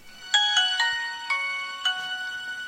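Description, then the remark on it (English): A bright, melodic Nokia phone ringtone plays a quick series of electronic tones with a rhythmic pattern, fairly loud, with no talking over it. “Nokia.”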